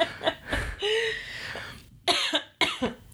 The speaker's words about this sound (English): Sorry. I don't have a cough button, so you're going to have to cough, and I got to edit it out now.